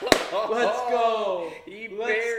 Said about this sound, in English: I'm sorry. That clap's going to be really loud, but I am hyped.